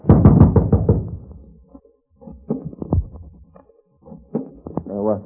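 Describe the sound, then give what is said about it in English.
A quick run of heavy knocks on a door, followed by a few scattered, sharper raps and thuds, with a brief voice at the very end. “Knock on the door.”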